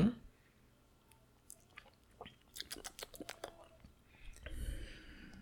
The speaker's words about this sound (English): Let's try. Let me get one more sip in there.